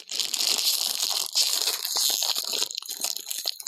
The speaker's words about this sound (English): Oh, yeah. ASMR right there. Munching them up.